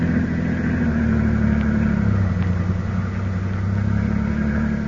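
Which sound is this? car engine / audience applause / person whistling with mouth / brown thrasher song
car engine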